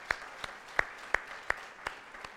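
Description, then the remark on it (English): A brief, quiet round of applause for a volunteer who has run the coffee service alone for several years: about seven sharp claps at a steady, unhurried pace over a couple of seconds, with no voices. “Yeah, we can give him a round of applause.”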